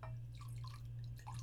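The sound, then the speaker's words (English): Chateau Saint-Michel wine trickles and splashes into a glass in a quiet, steady pour with small gurgling blips, over a constant low electrical hum. “Let's hear your little Wayne fucking pour. Yes, let's pour some.”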